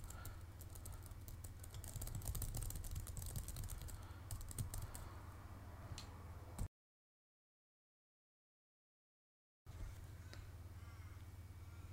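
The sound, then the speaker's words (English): Steady, rapid typing on a computer keyboard with quick clustered clicks over a low hum, stopping abruptly for a few seconds of silence before the clatter resumes. “I know I'm on the computer typing, but please no talking.”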